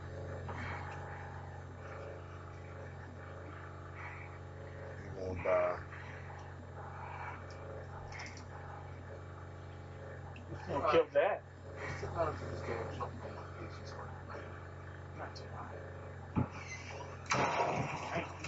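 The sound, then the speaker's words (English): Wooden floorboards in a house creak and squeak in a few scattered bursts as someone walks slowly across them, with soft footsteps over a steady low hum and faint muffled voices. “You hear the squeaking floors in this house, so if you fucking with me sometime, you know what the fuck he's gonna get me.”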